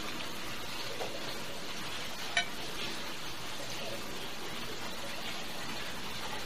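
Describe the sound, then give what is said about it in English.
SoCo, a whiskey-based liqueur, pours from a freshly opened bottle in a steady, hissing trickle that holds even for several seconds, broken once by a single brief clink partway through. No one speaks. “And you can smell the citrus and the sweetness of it just pouring it out of the bottle.”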